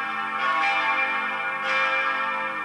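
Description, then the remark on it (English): Bells ring continuously in dense, overlapping peals, their steady tones hanging in the air with two swells of louder clanging, prominent, with no voices present. “Bells. Bells. There should be more bells in our lives.”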